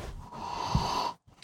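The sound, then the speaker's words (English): One long sniff of a cannabis bud through the nose, a steady airy inhale lasting about a second that cuts off sharply into near silence. No one speaks. “Take one sniff, one solid sniff.”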